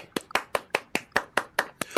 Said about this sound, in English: The applause is a bit more subdued than I'm used to.